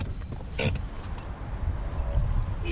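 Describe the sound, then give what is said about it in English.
A car rolls in and parks at the far end of a full-service filling station on the outskirts of Reykjavik, Iceland, with a steady low engine rumble, punctuated by a brief sharp creak near the start and a faint mechanical whine toward the end; no voices. “Skulason parks at the far end of this full-service complex, past the car wash, the pumps, the convenience store, and the snack bar”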